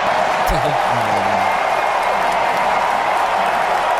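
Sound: stadium crowd cheering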